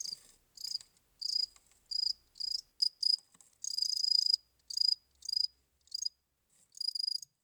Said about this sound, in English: Not that kind of cricket, though. This is the actual sound you might recognize.